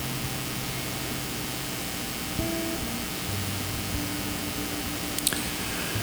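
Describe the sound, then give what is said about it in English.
Rain pelts a roof in a steady, even hiss that never lets up, with faint sustained low tones humming underneath and a couple of small clicks near the end. “Father, this morning as we come to you and we hear the rain pelting the roof, some of us feel life pelting us seems to be in a very hard way.”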